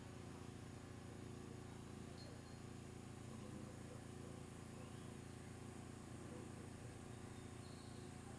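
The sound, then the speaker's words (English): A steady, unbroken drone of cicadas buzzing outdoors fills the whole recording, made on a mobile phone, a dense faint wash of insect noise with no pauses. “Oh, they're the cicadas.”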